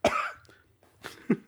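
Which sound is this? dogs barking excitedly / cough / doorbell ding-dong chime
cough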